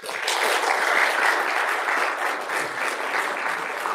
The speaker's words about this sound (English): I would like to team to felicitate him. With a huge round of applause.